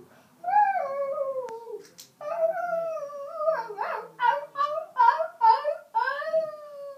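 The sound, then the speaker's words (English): A voice imitates a dog with drawn-out, wavering 'wow wow' barks that slide into howl-like whines. It's fairly loud, running for several seconds with brief pauses between calls. “The dog came by her bed and said, "Wow, wow."”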